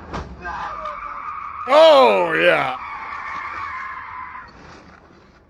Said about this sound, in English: Did you guys hear that fucking thud before the screech of the tires?